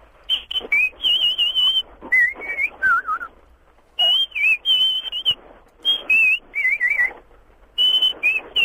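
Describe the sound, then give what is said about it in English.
The A-Team theme tune whistled in a shrill, high-pitched melody in quick chirping bursts and short warbling phrases, imitating twittering birds, repeating in several rising and falling runs with brief gaps between them. “But done in the style of really irritating high-pitched birds.”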